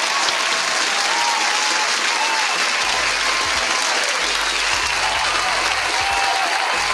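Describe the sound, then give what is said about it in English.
Steady, dense, loud applause from a crowd, with many hands clapping continuously for the full several seconds and no voices standing out. “Round of applause. One more time for the people.”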